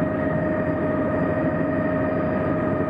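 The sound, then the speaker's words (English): A loud, steady helicopter engine drone fills the whole stretch, a constant low rumble with a faint whine on top and no voices, as the helicopter approaches nets set to catch brent geese. “I can see Vincent taking photographs of the brent and the helicopter as we approach the net.”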